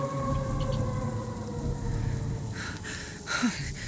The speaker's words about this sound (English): Shit. Was that her? That was the howl I heard earlier. She's coming our way.